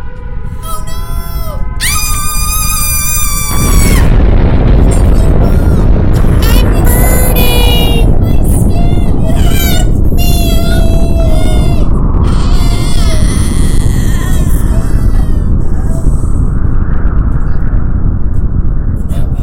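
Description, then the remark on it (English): A woman's loud, shrill scream, strained and wavering in pitch, rises in repeated bursts, soon joined by a heavy, steady low rumble underneath. “Should we let her scream? Let's do one scream.”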